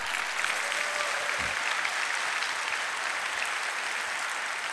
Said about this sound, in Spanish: Oh, esto es tremendo. Un aplauso a quien te da.